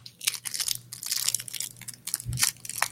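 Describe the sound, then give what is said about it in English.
Crunching of someone munching crunchy food, a quick irregular series of crisp, bright crackles for several seconds with no talking. “I'm like over here munching now.”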